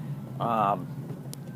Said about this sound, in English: There's another cop car. Keep it moving.